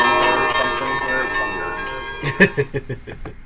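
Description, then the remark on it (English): Bells ring with long, shimmering overlapping tones that hang in the air, then a quicker run of rhythmic, clanging strikes follows, fairly loud. “I guess the bells were supposed to be tracked in some actual thunder or something here.”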